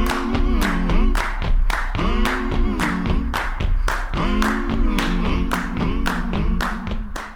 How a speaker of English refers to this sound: For example, listen to this song where the stomping is on the beats, but the clapping is on the offbeats.